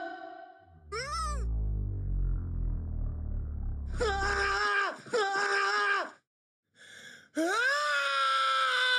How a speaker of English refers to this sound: you'll hear a wonderful isolated audio track of Tom Cruise screaming